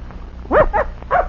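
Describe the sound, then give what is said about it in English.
A young puppy, out for the first time and being trained to follow a scent, gives three quick, high-pitched yips in close succession while sniffing, against a quiet background with no one talking. “He's still a puppy.”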